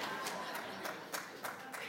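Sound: audience clapping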